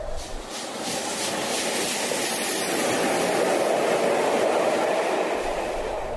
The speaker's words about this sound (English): After leaving the station, late because we're following a late running train to Manchester Piccadilly, we pass through the junction for the Cotswolds line, and then through the closed stations at Moreton-on-Lug and Dinmore.